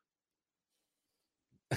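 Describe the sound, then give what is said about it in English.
After near silence and a faint, short intake of breath, a single loud sneeze bursts out abruptly at the very end. “Bless you.”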